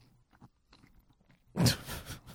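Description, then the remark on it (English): Faint, scattered mouth clicks give way to a loud crunch as someone bites and chews a crusty bit of cold pizza crust, the gritty chewing continuing for under a second. “The sound of the chewing.”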